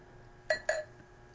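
Two quick, bright glassy clinks a fraction of a second apart as liquid, first combined in one glass, is poured from it into a mixing glass, each ringing briefly before fading into a quiet background.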